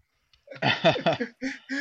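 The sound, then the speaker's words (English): A run of loud coughs: a rough, drawn-out fit followed by two shorter hacks in quick succession, with no talking. “I'm coughing.”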